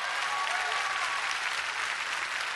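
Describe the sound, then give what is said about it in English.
An audience claps together as a clap offering to the Lord, a sustained, dense burst of applause filling the room, steady and fairly loud throughout with no voices standing out. “If we're clear on that, give the Lord a clap offering.”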